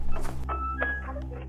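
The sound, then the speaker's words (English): A heavy wooden door swings open: a dull thump and scrape, followed by a thin, high creak from the hinges, all over a steady low rumble. “A heavy wooden door opened.”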